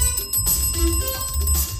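A bell rings with bright, sustained metallic tones that hold steady for about two seconds over a busy, rumbling background. No one speaks.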